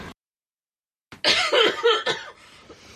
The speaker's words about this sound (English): I could feel the cough coming on. Swallowed the spider. Yeah, I've just swallowed the spider.